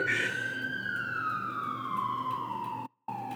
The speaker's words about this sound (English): Right. I don't feel like he's going very fast. Okay. Not with the intensity of the siren. No. You might need to go faster.